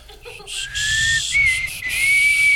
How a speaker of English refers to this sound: Hold on. I'm starting to notice you're not whistling at all. You're just blowing air.